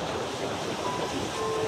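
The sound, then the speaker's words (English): Steady ocean surf at Martha's Vineyard washes continuously with a broad, hissing roar, fairly loud, mixed with a little wind and no voices. “Now they keep him alive in their hearts with a memorial bench that overlooks the ocean.”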